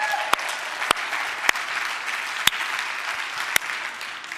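An audience applauds steadily for the gym rats who won the dodgeball tournament, a dense wash of many hands clapping at even loudness, with a handful of sharper, louder individual claps popping out above the crowd noise.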